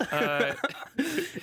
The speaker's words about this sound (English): Especially with the cough that I'll add in right here, actually. Oh, there we go. There's a little bonus for you. Yeah, I gave you an organic one.